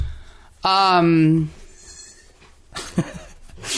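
A single loud, wavering bleat from a baby goat kept in a house lasts under a second, clear, then fades into quiet rustling and a couple of faint soft bumps.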